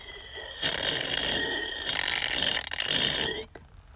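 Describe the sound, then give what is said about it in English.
A long, noisy slurp, like sucking hot coffee through the lips, lasting about three seconds with a hissy, bubbling texture and a brief stutter near the end. A voice imitates it. “When no one's around, everyone, when people are around, you're doing this when you're slurping.”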